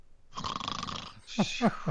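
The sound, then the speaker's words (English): A voice imitates a loud snore: a long, rasping inhale followed by a few quick, rattling, flapping exhale bursts. “Snoring.”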